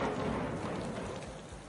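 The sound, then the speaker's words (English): Steady, dense spring rainfall hisses continuously across the whole moment, a full wash of drops with no voices and no breaks, fading just slightly toward the end. “Spring rains are coming.”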